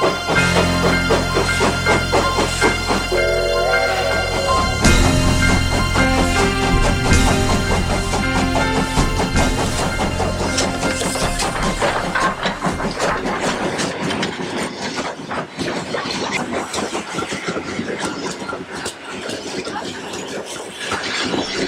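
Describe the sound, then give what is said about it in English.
A train pulls into a station with a loud, heavy engine rumble and sustained horn-like tones, the rumble gradually easing and thinning toward the end, with no voices. “The Encouragement Express train has pulled in.”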